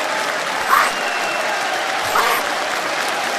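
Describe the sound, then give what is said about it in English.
An audience claps for the 73-9 Golden State Warriors of 2016 in a continuous, even patter of many hands, fairly subdued, with no voices over it. “Clap. Ain't clap loud in there.”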